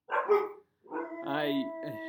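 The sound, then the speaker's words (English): A dog, Archie, lets out a short bark, then a rising, drawn-out howl that wavers before trailing off. It sounds fairly loud, with no other sounds around it. “My sorrow is mirrored by the dog's sorrow.”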